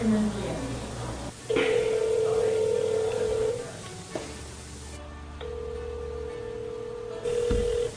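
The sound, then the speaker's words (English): A phone call being placed: steady electronic tones sound in long bursts, like a ringback signal, with a brief click between them and a faint hiss in the background. “These people are calling and reading the letter they wrote to the person that encouraged them.”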